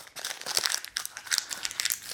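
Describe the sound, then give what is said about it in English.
Continuous crinkling and crackling of a $100 paper bill being crushed in the hand, with irregular sharp rustles and no talking. “I just crumpled it up.”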